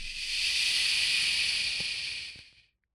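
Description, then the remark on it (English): A voice makes a long, steady shushing sound with a finger against the lips like a librarian, a bright, breathy hiss that holds for over two seconds before trailing off into silence. “I put my finger against my lips like a librarian and go, shh.”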